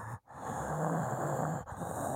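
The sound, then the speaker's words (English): A voice imitates heavy breathing: loud, raspy breaths drawn out in long rushes with two brief pauses between them, and no words spoken. “And it's just heavy breathing and then they walk up.”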